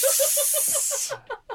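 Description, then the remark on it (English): Water poured on hot sauna stones in the ABC sauna hits them with a loud, steady hiss of steam lasting about a second, a rapid pulsing sizzle beneath it. The hiss cuts off abruptly, leaving a few short sputters. “This is the ABC sauna. I'm smoking cigars. I'll just pour a bit more of that water.”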